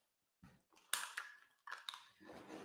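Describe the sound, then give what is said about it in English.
Irregular crunching and gnawing, with sharp crackling bursts and softer wet chewing sounds in between, as a dog chews something up, no voices. “The dog is trying to find a comfortable spot, and he's found it. He's chewing something up.”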